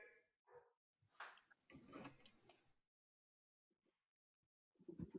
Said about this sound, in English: The golden doodles are barking it up.